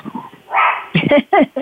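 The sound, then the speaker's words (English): The speaker's dog barks, several sharp barks in quick succession after a short rush of noise, with a brief murmur of voice at the start. “It's my dog as well.”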